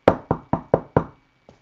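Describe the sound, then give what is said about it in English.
Five firm, evenly spaced, sharp knocks on a wooden door, followed by a single faint tap after a short pause. No voices. “I knock at the door.”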